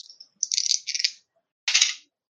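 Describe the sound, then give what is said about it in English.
Dice are rolled for damage in a tabletop game, clattering and rattling across a hard surface in two bright, clicking bursts, the first longer and the second shorter, with a brief pause between and no voices. “I need other dice for that shit.”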